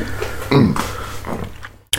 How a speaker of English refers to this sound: My body's telling me no. I'm about to blow my nose.